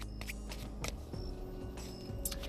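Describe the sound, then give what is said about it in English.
A deck of tarot cards being shuffled a last time to draw a healing card, in several short, crisp riffling bursts, fairly quiet, over a low steady background hum with no talking. “Last shuffling.”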